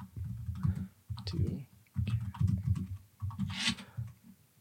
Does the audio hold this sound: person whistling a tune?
no